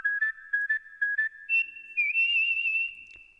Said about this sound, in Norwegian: Du, jeg plystrer.